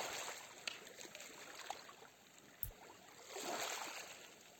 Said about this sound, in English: You let that calm water go all the way to your waist. And all the way up to your belly button. And as you listen to the water,